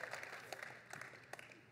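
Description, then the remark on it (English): Soft applause from an audience, a dense patter of hand claps with a few sharper claps standing out, fairly quiet and brief, with no talking over it. “I'll clap for that.”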